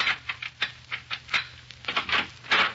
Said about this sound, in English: In a Chicago apartment hotel overlooking Lake Michigan, an attractive young woman dressed to go out for the evening is pacing the floor in a fit of ill temper. Presently, the cause of her ill temper inserts a key in the door.